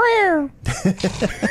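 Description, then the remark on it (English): A person mimics a cat's drawn-out, falling yowl for about half a second, like a cat fight cry, as a call-out sound for SB Nation's Big Cat Country, then someone immediately starts talking. “You cat fighting now? That was my Big Cat Country sound, my call out.”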